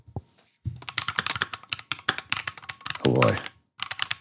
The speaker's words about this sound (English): You've gone down the clicky keyboard rabbit hole, haven't you? I have. Yeah, I built a keyboard.